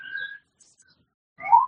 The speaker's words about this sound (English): So I feel obligated to speak difficult truths, and I'll wait till the siren passes.